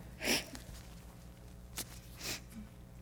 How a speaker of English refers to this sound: You bring me Kleenex? Thanks. Love. And he doesn't want to hear me keep sniffling.